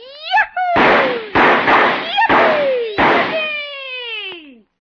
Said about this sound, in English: This looks like as good a spot as any to start the fireworks